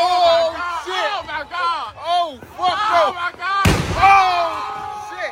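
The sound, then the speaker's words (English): Excited, overlapping voices, then a single loud firework explosion on the 4th of July bursts out with a sharp crack and a lingering rumble as the voices carry on over it. “This is a fireworks safety video and why you don't fuck around on the 4th of July.”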